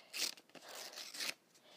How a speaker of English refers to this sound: I love like ripping the paper and making it like look so like, I don't even know like what aesthetic that is, but it looks really good.